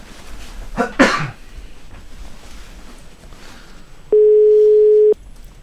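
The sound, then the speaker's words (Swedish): A single steady ringback tone of an outgoing phone call sounds for about a second from a phone earpiece, clear and fairly loud, after a short cough-like burst and a quiet pause. “Nu ringer Marcus Svensson.”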